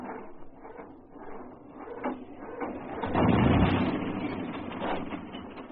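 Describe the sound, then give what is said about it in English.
A rough, poorly tuned car engine runs steadily with an uneven mechanical rattle, its rumble swelling louder midway before settling back; the car burns a little oil and trails smoke. No one speaks. “this car doesn't sound like it's tuned properly.”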